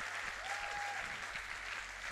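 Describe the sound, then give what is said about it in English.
A church crowd claps hands in dense, sustained applause, a steady wash of many overlapping claps with a faint low rhythmic thump underneath and a brief thin tone partway through. “Somebody clap your hands like this is powerful.”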